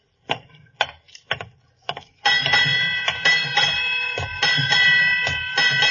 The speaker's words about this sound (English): Eight bells. Let's see, that'd be... Midnight, Watson.